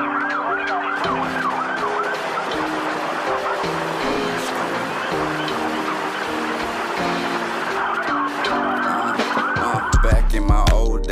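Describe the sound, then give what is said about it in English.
A police siren wails in rapid rising and falling sweeps, mixed with a steady musical backing, ending with a few heavy low bass thumps. “Police brutality, I heard police coming.”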